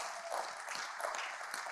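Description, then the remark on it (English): An audience claps their hands to God at a morning church service, a dense, steady wash of many overlapping claps that continues evenly throughout, with no voices standing out. “Somebody clap your hands to God this morning.”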